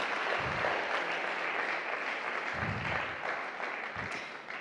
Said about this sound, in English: Can we just take a minute to applaud our kids and young people? They are so amazing.